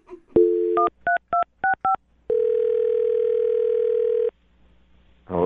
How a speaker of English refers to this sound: All right, well, I'm going to dial his phone number right now and see if we can get him on the phone, okay?